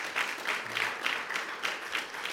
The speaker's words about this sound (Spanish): Démosle un fuerte aplauso. Give her, please, also a round of applause.